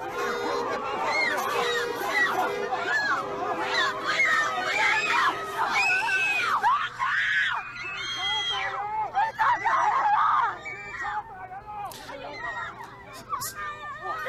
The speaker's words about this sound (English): We don't need the screaming.